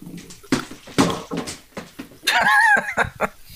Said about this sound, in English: The dog is just licking nonstop. I'm trying to get him to stop. And he's just, stop it!